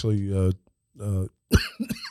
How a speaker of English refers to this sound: Actually, see, you talked about suicide in people, and it made me start coughing.